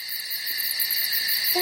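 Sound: crickets chirping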